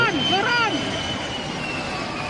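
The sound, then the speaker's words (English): An aircraft engine roars steadily as the pilot pushes the throttles for a go-around after S-turning to get onto the runway center line, a broad loud rush throughout, with a brief wavering voice or rising whine in the first moment. “I mean, you can hear the guy's panic and throttles.”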